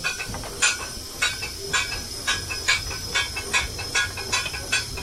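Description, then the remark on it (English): A steam locomotive starts forward as the regulator is cracked open, with regular, evenly spaced chuffs of hissing steam, about two per second, over a low rumbling background. The bursts are loud, with no talking. “Crack the regulator open. Choose your nose. Start forward.”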